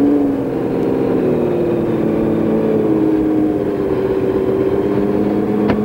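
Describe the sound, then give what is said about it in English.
A Porsche 917K race car engine is fired up and idles and revs loudly before warm-up laps, a continuous throaty roar whose pitch rises and sags slightly over a few seconds, with no talking. “Oh, this shall fire here. There's the fire. Fire it nicely.”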